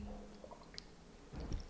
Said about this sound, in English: Sorry, taking a sip of coffee.